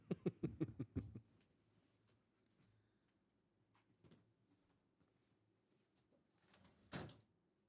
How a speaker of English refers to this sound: Holy shit, I need to close that door.